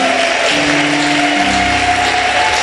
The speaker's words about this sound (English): I want us to honor this great prophet of God, amazing man of God, a gift to the body of Christ. Hallelujah. You can do better with your hand clap.